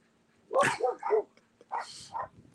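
A puppy barks excitedly in four quick, high-pitched yaps, fairly loud, arriving in two pairs with short pauses between them.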